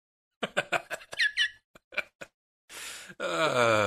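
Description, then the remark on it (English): A string of short squeaky, whiny vocal bursts gives way to a brief hiss, then a loud, sustained buzzy fart closes things out, lasting under a second. “No, like, especially the fart at the end, I think... throws it off.”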